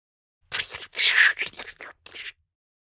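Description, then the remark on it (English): A voice imitates crumpling paper with a few seconds of hissy, crackling bursts, loudest in the middle, followed by a short pause and one last brief rustle. “Crumpling paper.”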